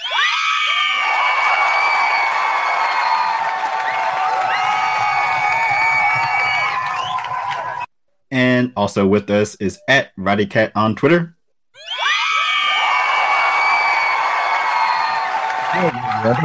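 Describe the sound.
A loud burst of canned applause and crowd cheering with shrill whoops and screams runs for several seconds, cuts out for a brief spoken line, then swells back up just as loudly.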